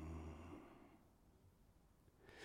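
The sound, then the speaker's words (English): A slow, deep exhale drifts out and fades over about a second, followed by near-quiet and the start of another breath at the very end. Soft, with no talking. “Yes, breathing,”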